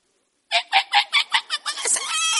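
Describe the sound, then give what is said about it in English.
A bird calls loudly at 5 a.m.: six quick, evenly spaced clucking notes that run straight into a longer, sustained cry. No one speaks. “There's a bird that comes at 5 a.m.”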